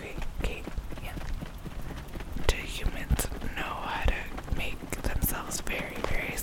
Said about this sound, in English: It sounds like horse hooves. Is it like stallions?